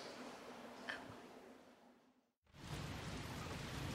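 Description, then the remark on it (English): Steady rain hisses continuously, dropping out briefly to near silence before returning heavier and louder. No voices are present. “If it rains any harder, I'll go inside.”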